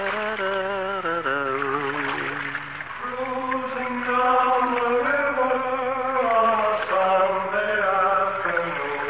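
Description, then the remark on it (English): A voice sings a slow, sustained melody with wavering held notes, loud, carrying a hollow, echoing ring as if out over open water. “Listen to that lovely echo”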